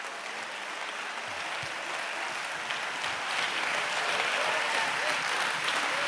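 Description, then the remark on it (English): An audience at a worship service claps their hands in a dense, sustained wash of applause, growing slightly louder and fuller toward the end, with no clear voices above it. “Oh, clap your hands and magnify God.”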